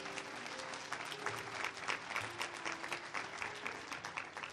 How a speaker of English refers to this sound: Can we just give God one more hand clap of praise?